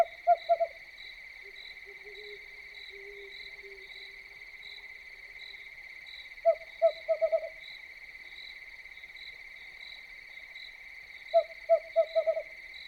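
A western screech owl toots from no more than 30 feet away near the Rio Grande, in three series of short, quick toots that speed up like a bouncing ball, spaced several seconds apart over a steady background of insect trilling.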